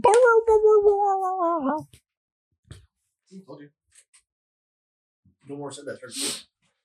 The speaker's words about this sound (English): The dog will start barking.